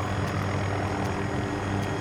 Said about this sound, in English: Oh, enemy helicopter. Look at this. Coming in low and slow, son.